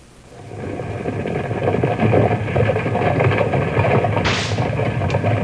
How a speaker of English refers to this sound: There go 12 mules pulling two large wagons full of a special sand used by the Mountain Refining Company to make a particular kind of glass. 12 fine mules driven by their burly master,